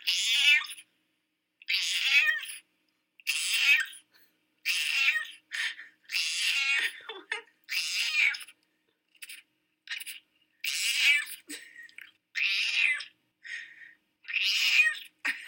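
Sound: voice imitating cat meows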